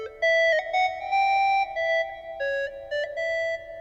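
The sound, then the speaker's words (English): A breath-blown phone ocarina app, played by someone in Southern California and heard through the app's feature for listening to other users around the world, plays a slow melody of about eight sustained, hollow mid-pitched notes, some held longer, with brief gaps between phrases and no talking. “And in the same app, you can listen to other people blowing to their phones from around the world.”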